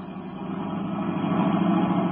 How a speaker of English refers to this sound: Turning onto the road, Britt Reed pressed down on the accelerator. Sedan sped along the concrete after Brinkley's car.